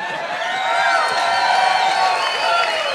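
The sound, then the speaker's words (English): An audience at a company event cheers loudly and steadily for invited guests who will share thoughts on new products, a dense wash of overlapping shouts, whoops and high excited voices sustained throughout with no pause. “And you all need to be really kind and cheer really loud for them so that at least they feel loved, right?”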